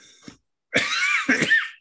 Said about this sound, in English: Yeah, just a little cough.